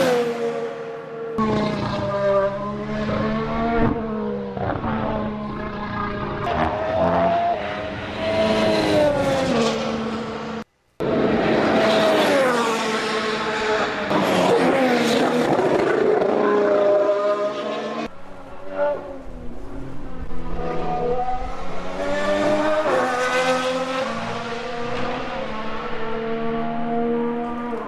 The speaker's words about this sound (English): This doesn't sound like a Formula One car. It sounds like an old 1980s rally car. And I'm just going to pause now so you can all listen at home to what it sounds like.